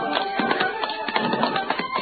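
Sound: running footsteps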